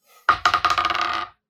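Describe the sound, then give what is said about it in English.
Two dice clatter onto a hard table during a tabletop game, two sharp hits followed by a quick run of smaller bouncing rattles that settle within about a second, landing on a 4 and a 6. The sound is fairly loud, with no voices. “It's a 4 and a 6 on the dice, and I'm taking -4 for doing 2 attacks, so I guess there's just too many blades.”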